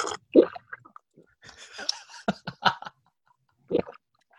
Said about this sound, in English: And are you ready for me to drink some water? Are you ready?